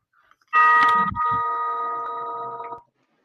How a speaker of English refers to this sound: He hurries to his bed as the chimes ring again.